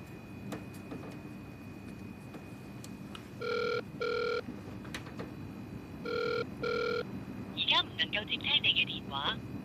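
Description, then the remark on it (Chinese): A telephone call to a driving-licence agency office rings in two double-burst cycles with no one picking up, over a low background hum, followed by a few quick, high chirping sounds. “都成两个礼拜噶啦噃，仲未有消息嘅，打个电话问先。”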